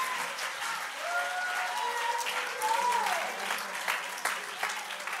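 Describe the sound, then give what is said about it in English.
An audience claps their hands to praise the Lord in a steady, dense burst of applause lasting several seconds, with a few voices calling out over the clapping. “Let's clap our hands unto the Lord and magnify him.”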